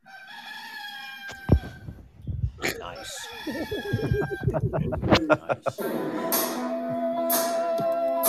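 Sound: rooster crowing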